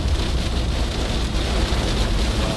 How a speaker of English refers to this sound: Oh, ice cold storm coming now.